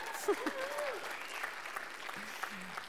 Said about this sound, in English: 12 years, that's a long time. I think that's worthy of maybe a bit more of an enthusiastic hand clap. Yes. Okay.